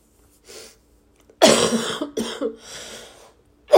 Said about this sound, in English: I have this worst, this disgusting cough. Ew.